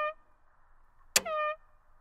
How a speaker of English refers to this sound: Oh, man. I liked that air horn.